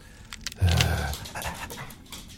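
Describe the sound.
A dog pants and whimpers, with a louder, breathy burst early on that settles into softer, uneven panting and faint whines for the rest of the moment.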